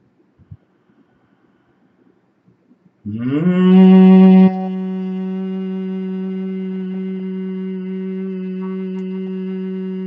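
After about three seconds of near silence, a group hum made while breathing out in a breathing exercise swells in, briefly louder at first, then settles into one steady, low, sustained tone held to the end with no talking.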